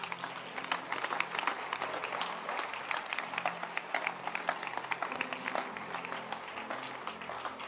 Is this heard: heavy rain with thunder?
no